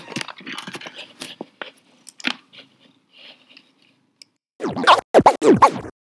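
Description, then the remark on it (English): Scratchy rustling and scraping right against the microphone as a big, heavy ginger cat attacks it: a flurry of irregular scratches, a brief lull, then a louder burst of rough, rapid scratching at the end. “Cat attacking the microphone.”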